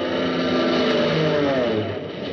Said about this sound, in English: Another Jap plane pulled out of its dive and droned by us. We could have hit him with a rock.